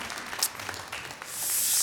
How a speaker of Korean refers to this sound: 그리고 한 분 한 분의 이런 헌신이 한국의 또 아름다운 하나의 열매를 맺을 수 있게 하나님이 일하셨는데, 오늘 여러분들도 물론 헌신하셨지만 우리 또 서로에게도 좀 격려해 주시고 우리 이 모든 열매를 맺게 하시는 하나님 옆에 좀 감사와 영광의 박수 올려드리길 원합니다.